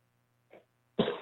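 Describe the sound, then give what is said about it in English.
A faint throaty catch is followed by one loud, harsh cough, with no talking around it. “Is that just a smoker's cough?”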